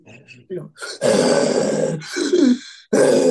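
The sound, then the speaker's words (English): A voice imitates a Baptist preacher's heavy, huffing end-of-sermon breathing: several loud, breathy grunting gasps, the longer ones drawn out with a rough, strained edge. “she's gonna be breathing hard like your favorite Baptist pastor Oh, at the end of his shit.”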